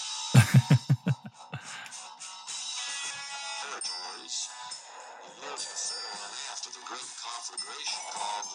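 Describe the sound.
A song plays through a phone's small speaker, thin and tinny with little bass. It opens with a quick run of sharp rhythmic hits, then a vocal carries on over the music.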